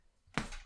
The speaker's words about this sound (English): like this punching bag that I'm hitting, will always be here for you to release your energy onto.